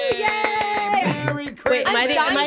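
A person claps hands quickly and steadily, sharp claps repeating throughout while an excited voice cheers and whoops over them.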